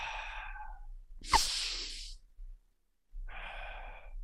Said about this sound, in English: So you get sharp breaths in, your heart rate should jump up.